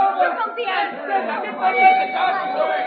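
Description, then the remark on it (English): A crowd of onlookers gathered around a body at a murder scene chattering, many overlapping voices forming a steady, busy murmur with no single voice standing out, holding fairly constant in loudness throughout. “See that he gets through this mob, will you?”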